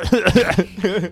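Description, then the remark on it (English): A voice acts out a short run of raspy, voiced coughs, four or so quick bursts in a row, depicting coughing up blood, moderately loud with no other sounds around them. “I cough up a bunch of blood again.”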